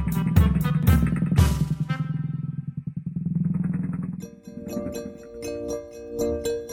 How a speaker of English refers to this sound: Then Little Red gave Grammy and Wolfie a hug goodbye, and she rode her scooter all the way home.